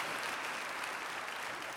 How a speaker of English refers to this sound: Yes, come on. You've been wanting to applaud this whole morning, so let's give a good applause.